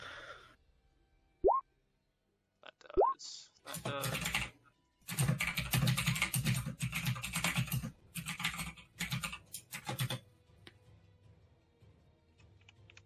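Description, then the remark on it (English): Two quick rising plops, then a burst of rapid, clattering computer keyboard typing lasting several seconds with a couple of brief pauses, fairly loud. “are you at your keyboard?”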